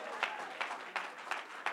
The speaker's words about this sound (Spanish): ¿Cuántos dan gloria a Dios? Un aplauso al Señor.